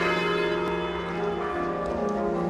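Church bells toll together across Britain in mourning for the death of Queen Elizabeth, a dense, ringing wash of overlapping tones, steady and fairly loud, with no voices present.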